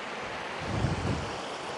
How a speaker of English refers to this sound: I'm crossing a river, if you can hear the water surrounding me. It's gonna take a lot of RAM to figure out my stepping here, so I'm gonna pause a bit.